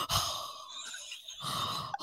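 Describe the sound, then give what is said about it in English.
Heavy breathing: a long breathy exhale, a quieter pause, then another deep, sigh-like breath. No one speaks. “You start breathing heavy and forgetting we're recording.”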